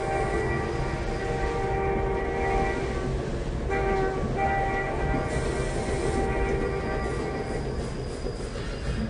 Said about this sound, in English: Even now, I dream about the train. Childhood trains. You'd watch these trains, they'd come and they'd go.